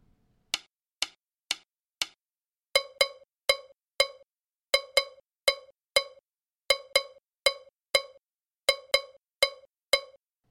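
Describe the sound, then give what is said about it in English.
A ringing metallic bell, a timeline part in a student percussion ensemble entering after the gongkogwi, struck in a steady repeating pattern, often in quick pairs, bright and clear, after a few sharp dry clicks open the passage. No voices. “The bell follows.”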